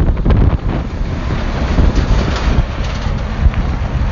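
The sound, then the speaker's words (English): Loud, continuous wind from a 40 mph head crosswind in the desert buffeting the microphone, a dense low roar with irregular gusty thumps and rumbles throughout, overpowering, with no voices. “Me a nice 40 mile an hour head crosswind.”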